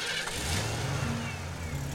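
A speeding pickup truck engine revs hard, a loud continuous roar with rising tones over two seconds, and no voices.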